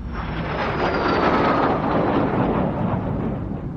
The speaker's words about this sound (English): Did you say an airplane? That was easy, right?